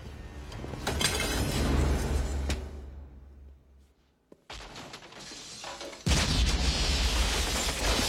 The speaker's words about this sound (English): There's a little chewing gum explosion. Chewy came in handy.